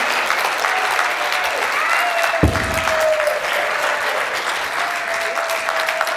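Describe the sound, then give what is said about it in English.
An audience bursts into steady, loud applause and cheering, a dense wash of clapping that holds evenly for several seconds, with a few whoops rising above it. “Guys, go ahead and cheer.”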